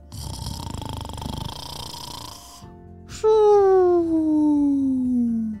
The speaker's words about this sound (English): And a hippo, they can snore pretty loudly when they're sound asleep.